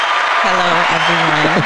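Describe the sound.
A crowd claps steadily and loudly for under two seconds, the dense patter of hands joined by voices cheering and whooping over it.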